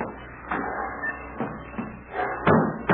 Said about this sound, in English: Oh, don't you know when you slam a door, you shatter my nerves?